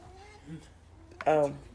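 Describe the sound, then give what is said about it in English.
A hungry cat lets out one loud, drawn-out meow near the end, preceded by a brief faint murmur over a low steady background hum. “Sorry, my cat is hungry, so we're gonna feed her.”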